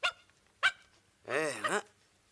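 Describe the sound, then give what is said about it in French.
A dog gives two short, sharp barks, then a longer wavering, whining yelp that rises and falls in pitch. No one speaks. “Eh bien, mon chien, tu as eu la même veine que moi.”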